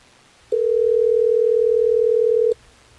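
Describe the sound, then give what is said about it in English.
A single steady telephone ringing tone from an outgoing call placed by the Hot 101.5 radio show in Tampa Bay sounds for about two seconds, loud and clear over faint background hiss, then cuts off. “Well, let's try to get Jerome on the phone for you, Chloe.”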